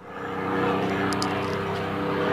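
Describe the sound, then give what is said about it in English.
A propeller-driven Mustang warplane roars loudly and steadily, its engine drone dense with low harmonics and a rising whine, sustained without any talking. “That would be Mustang sound effects.”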